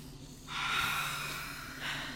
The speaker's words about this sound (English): Do we need to meditate and center ourselves after that? I'm like, whoo, take three deep breaths.